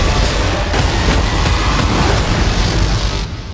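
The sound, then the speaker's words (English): A huge booming movie-trailer 'bwong' hit, loud and dense with deep rumble, holding steady for about three seconds before cutting off abruptly. No one speaks. It is a version of the goofy trailer sound effect known as "Bwong". “The Hall of Fame here, if you don't know, the Hall of Bwong is a Hall of Fame that showcases goofy trailer sound effects, which I love.”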